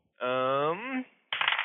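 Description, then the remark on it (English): A short, bright clatter of dice tumbling across a hard table, fairly loud, an attack roll in a tabletop game that lands 18, coming right after a drawn-out vocal exclamation and a brief pause. “Okay, so I got 18 on the dice, plus my attack bonus brings that to, 25.”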